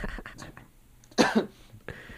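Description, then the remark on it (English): A harsh burst of coughing, one or two rough hacks in quick succession, with softer throaty noises and faint background murmur around it. “Cough boy.”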